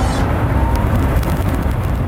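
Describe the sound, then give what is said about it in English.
A loud car roars as it accelerates hard, a steady deep rumble with a few sharp rattles and bursts over two seconds and no voices. “Watch me take off!”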